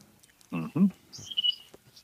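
A few quick, high bird chirps ring out outdoors by a deck in southern Illinois on a slightly cloudy day, coming right after a brief low voice-like murmur, moderately loud against a quiet background.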